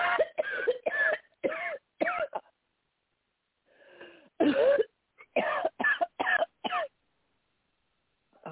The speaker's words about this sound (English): Deep breath and cough, deep breath and cough, deep breath and cough.